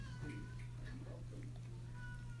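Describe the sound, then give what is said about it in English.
A person imitates a cat, producing a few short, whiny meow-like cries in quick succession over a steady low background hum. “Is that a cat I hear?”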